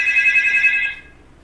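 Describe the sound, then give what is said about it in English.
A phone rings for an incoming call with a bright, warbling electronic tone, pulsing rapidly for about a second before cutting off, fairly loud with no one talking over it. “Can't answer the phone.”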